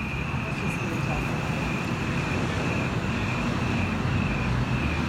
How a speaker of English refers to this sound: Cars are awfully close.